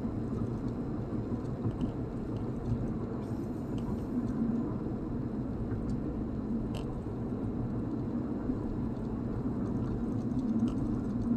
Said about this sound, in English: Meanwhile, you got fuckers flying around their personal aircraft here in Dallas.